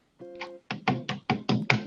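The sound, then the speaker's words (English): A brief tonal hum gives way to about six hard, hollow taps of a VR controller against a microphone, struck in a quick, slightly uneven rhythm, each one loud and thumping. “Can you wait before you put it down, can you keep your mic on and just tap it? With your controller.”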